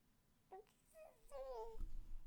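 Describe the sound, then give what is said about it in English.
An 8-month-old baby girl babbles in a few short, high-pitched cooing bursts with rising and falling pitch, followed by a low rumbling noise like the mic being handled. “What are you saying?”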